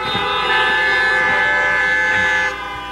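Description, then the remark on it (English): A loud vehicle horn blares in one long, steady honk lasting a couple of seconds before cutting off, with no talking over it. “Give me a honk, would you?”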